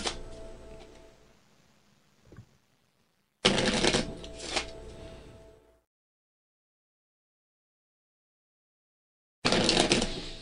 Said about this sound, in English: Split the deck once. Three fan shuffles. A lot of fan shuffles.